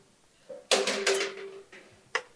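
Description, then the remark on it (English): A table and chairs scraping across a floor, dragged in one long grinding slide with a faint squeal, then a short sharp knock as something is set down. “can we get this table removed, and can you guys grab some chairs, and whoever wants to, I'll just get some water.”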